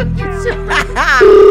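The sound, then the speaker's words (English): A telephone ringing on the line as the Metro FM radio show phones a caller back: steady electronic tones hold underneath a jumble of brief chirps and warbles, then a louder, buzzy sustained tone takes over at the end. “Let's phone him back.”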